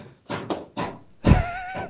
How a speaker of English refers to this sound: Well, it seems like President Mike is hammering in there